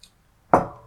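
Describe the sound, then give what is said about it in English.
A single solid clink of beer glasses meeting in a toast, sharp at the start and then ringing out briefly. It stands alone, with no voices. “All right. Cheers. Cheers, to our buddy.”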